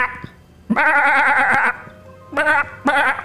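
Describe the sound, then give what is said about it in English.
Goats outside, scared by something, bleat in three loud, wavering cries: one long bleat, then two shorter ones after a brief pause, with no talking. “And then there's something scaring the goats outside.”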